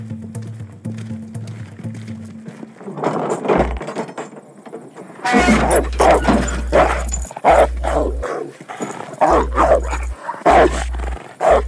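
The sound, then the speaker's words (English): A dog barks loudly, a rapid run of sharp, repeated barks that fills the second half, following a few seconds of low rumbling background noise. “This your dog?”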